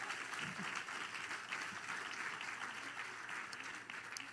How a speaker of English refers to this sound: Can we get a round of applause for them? Another one.